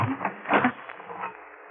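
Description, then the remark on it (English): A key turns in a door lock, locking the door from the outside: a short mechanical rattle and scrape with one louder clunk partway through, then fainter clicking as it settles. No one speaks. “Now, we'll lock this door on the outside.”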